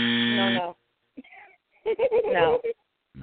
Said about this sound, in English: Oh, my God, that buzzer. Wrong answer.